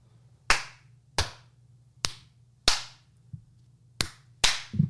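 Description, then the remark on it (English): Six sharp, loud hand claps land at uneven intervals, not quite in unison, each with a brief ringing tail, over a faint steady low hum and no talking. “Are we supposed to clap simultaneously?”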